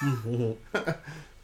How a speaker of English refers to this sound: Oh, now I'm coughing. It's contagious. Wait, did you catch my AIDS or something? No, I went down the wrong pipe.